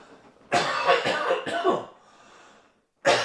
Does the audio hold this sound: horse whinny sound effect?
no